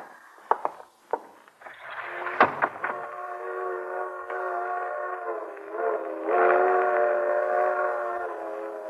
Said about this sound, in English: Hear that, Iris? Freight train.